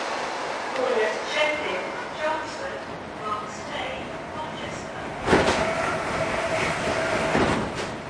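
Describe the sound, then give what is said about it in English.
Interior of a moving passenger train, the 909 train to Colchester in Essex: a steady rumbling hum with rattles and clacks, a sharp jolt partway through, and muffled voices murmuring faintly in the background. “Fingringhoe is in Essex, and on board the 909 train to Colchester, I have time to conduct some conscientious, in-depth research on my destination.”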